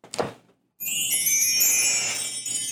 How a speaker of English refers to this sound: You know, a lot of people actually never seen me play the chimes.